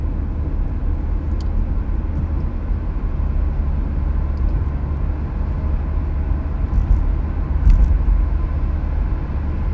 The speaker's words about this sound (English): there's like an actual car coming. Whenever I'm driving down this dumb road.